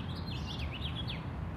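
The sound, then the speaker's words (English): House finches, nesting in gaps and cracks around a museum facade, sing from plane trees in a city: a rapid, continuous warbling run of high twittering notes over a steady low rumble of city background noise. No one speaks. “Seems to be a major house finch hotspot.”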